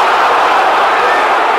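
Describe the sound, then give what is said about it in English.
A large football crowd at the Mill roars in loud, sustained disapproval at a crunching tackle, a dense wall of jeering voices with no single shout standing out, filling the whole short moment. “To the disagreement, the chagrin of the Mill crowd.”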